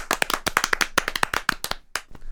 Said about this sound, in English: Could we get a round of applause for a major seventh?